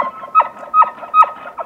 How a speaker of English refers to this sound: If you are patient, you get to hear one of nature's grandest songs, the bugle of bull elk. It starts as a high-pitched moan, only to increase into a loud series of short grunts.